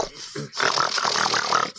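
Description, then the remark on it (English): A person imitates a dog's snort: a short voiced lead-in followed by a sustained, raspy, nasal snorting burst lasting over a second, fairly loud, with no actual words. “No, I bet he's like...”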